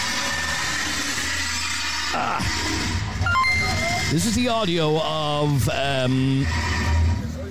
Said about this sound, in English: This is a car basically joyriding around the estate. The back wheel, the back tire is gone off, so it's driving on metal on the road. There's sparks coming out of the back of the car, and you can hear him doing handbrakers